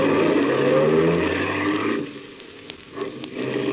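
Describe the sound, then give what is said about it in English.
A car engine roars loudly as the vehicle speeds along on the way to Oakland, the rumble steady for a couple of seconds before easing off, with a few faint clicks as it drops lower. “You mind driving fast? No, I don't mind. I'm in a hurry.”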